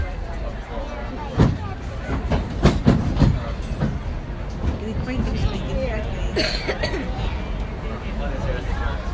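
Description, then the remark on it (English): The Disneyland Railroad train rolls along with a steady low rumble and scattered clacks from the wheels and cars, on its way to New Orleans Square, while voices murmur faintly in the background. “Welcome aboard the Disneyland Railroad.”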